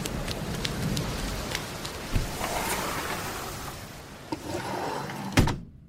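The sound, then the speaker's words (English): Steady rain pours down in a dense, hissing wash, with scattered heavier drops and a few sharp thumps breaking through before it cuts off abruptly at the end. “Uh-oh, spoke too soon. Here comes a rainstorm.”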